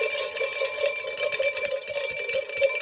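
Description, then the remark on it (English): A bright metallic bell rings continuously with a fast trilling rattle, like an alarm bell, loud, with a sustained shimmering tone and no voices. “It's a Two Bell Tuesday.”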